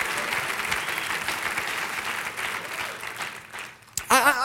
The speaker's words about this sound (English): Somebody clap your hands and give God praise right there.